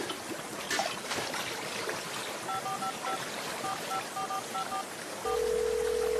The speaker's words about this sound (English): There's a broken pipe at the outflow from the wastewater treatment. And it's flowing from the Umgeni River.